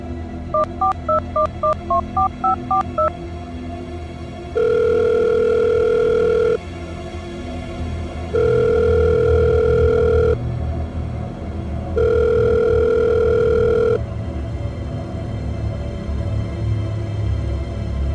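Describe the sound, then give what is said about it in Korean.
A quick run of about eleven short dialing tones as a South Korean telephone number is dialed, followed by three long, evenly spaced ringback tones with pauses between them, all clear with no voices. “이건 남조선의 전화번호입니다. 확실히 남조선에 실마리가 있나 보군. 연락하지.”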